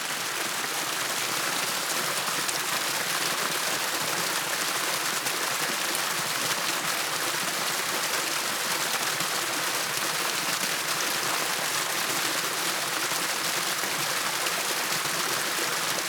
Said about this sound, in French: Chaque cours d'eau, du petit torrent à la cascade puissante, a sa propre mélodie, son propre rythme.